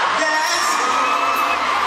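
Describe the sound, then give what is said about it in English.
A loud, dense roar of a concert crowd cheering at a live performance in Paris, with high-pitched screams and whoops layered into a continuous wall of sound throughout. “that was not going down in Paris where … was performing. And he noticed Gabrielle Union in the crowd”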